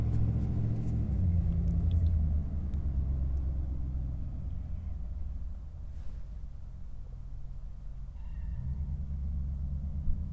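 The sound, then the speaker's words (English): A truck rumbles past, a deep, steady engine drone that eases slightly midway before swelling again toward the end, with no talking. “Let's wait for the truck to pass.”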